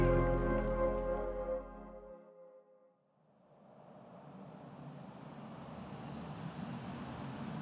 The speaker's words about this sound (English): We're on the Williamsburg Bridge, stuck in traffic. Going nowhere fast. Here I am, sitting in a car